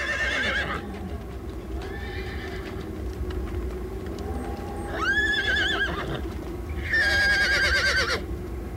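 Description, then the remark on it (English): A horse whinnies several times in loud, wavering bursts, over a steady rumble of hooves clip-clopping and a low background din, with no one talking. “play the horse again, play the horse again, play the horse again.”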